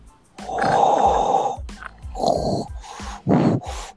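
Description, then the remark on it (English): Loud, raspy heavy breathing: one long, drawn-out breath followed by several shorter, huffing breaths with a snorting, snore-like roughness. No one speaks. “No, someone's breathing really hard.”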